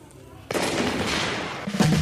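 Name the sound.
shotgun blast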